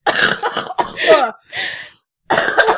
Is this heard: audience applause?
no